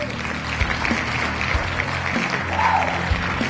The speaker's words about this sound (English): So I'm going to give you this applause, like seriously, like I'm going to mean it.